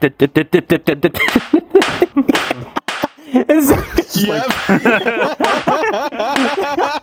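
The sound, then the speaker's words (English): A quick, even run of about nine wet-sounding slaps, made with the hands to mimic cheese being slapped down on top of other slices, followed by laughter and excited talking. “I was mimicking what he was saying, like slapping the cheese on top of the other slices with my hands while making the slap sound”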